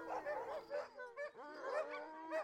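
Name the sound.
dogs barking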